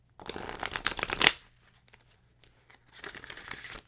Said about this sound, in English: Okay, so the first thing I'm going to do is shuffle these cards up. And I have no rhyme or reason with this. I just shuffle them just like you would shuffle any old card deck.